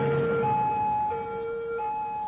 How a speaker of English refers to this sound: with sirens blaring and lights flashing, the ambulance sped off to Exeter Hospital.